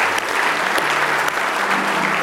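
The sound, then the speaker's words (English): Sustained applause from a church audience giving the Lord a hand clap of praise, a dense steady wash of many hands clapping at once with no gaps, fairly loud throughout, and no voices standing out above it. “Give the Lord a hand clap of praises.”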